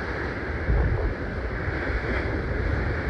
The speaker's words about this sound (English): So earlier we were right over there when one of these big old waves hit.